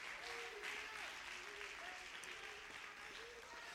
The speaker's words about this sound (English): Would you clap your hands if you're thankful for the blood?